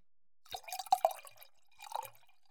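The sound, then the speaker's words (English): Sweet red wine pours into a glass, with a few quick wet glugs and drips in a short burst, then a brief pause and a softer second splash. “So, I'll let you refill. Bring your mic close. I just want to hear the glug, glug, glug, glug, glug.”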